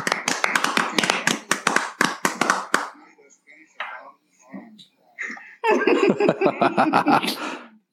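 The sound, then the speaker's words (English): Two loud bursts of crowd clapping at a comedy roast, a fast crackle of many hands with some laughter mixed in, separated by a few seconds of scattered quieter sounds. “It's okay to clap”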